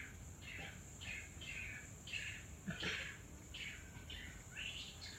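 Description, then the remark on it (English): A series of harsh, raspy owl screeches repeats about eight times at a steady pace over a constant high insect-like drone and low background rumble; no one speaks. “Because it's only in silence you can hear those screeching owls.”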